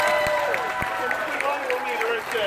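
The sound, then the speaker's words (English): An audience applauds the sound crew steadily, a dense wash of clapping with a few sharper claps and some voices calling out over it. “Give the sound guys a round of applause.”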